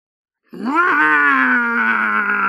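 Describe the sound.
A person imitates a monster's roar: one loud, sustained growling cry that starts abruptly after a brief silence, rises slightly in pitch, then holds steady for about two seconds.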